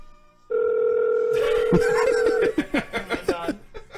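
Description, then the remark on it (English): A single steady electronic ringback tone drones for about two seconds on a phone line, then breaks off as choppy bursts of laughter and voices take over. “Did a piece of bait pick up on the first ring?”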